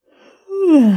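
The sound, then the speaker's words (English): A single yawn: a soft, breathy intake swells into a loud, drawn-out voiced groan that slides steadily downward in pitch, with no talking. “This episode is Stop Yawning.”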